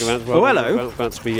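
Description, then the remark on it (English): Six dogs bark and bay together in a steady, tonal chorus, their overlapping calls rising and falling in pitch with brief gaps between bursts, fairly loud throughout. “They're musical dogs. Orchestra of dogs.”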